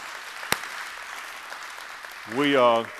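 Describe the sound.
A church audience at North Star claps steadily, giving God a praise clap for its student and campus pastors, a dense, even wash of applause with one sharp click early on. Near the end a voice calls out over the clapping.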